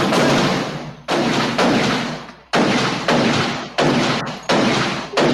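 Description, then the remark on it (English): A string of loud, booming gunshot sound effects, about eight blasts at uneven intervals, each hitting sharply and rolling off in a long echoing decay, with no talking. “Shots give fire. Me some gunshots”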